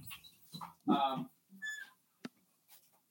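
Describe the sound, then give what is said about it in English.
A pet dog whimpers in a few short, high-pitched whines, mixed with a brief throaty vocal burst and a sharp click, all fairly quiet. “Sorry, I gotta deal with my dog here.”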